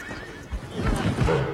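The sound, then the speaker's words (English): A horse neighs loudly, a wavering whinny with breathy snorts, while hooves shuffle and thud underneath. “Oh, walking into the horse?”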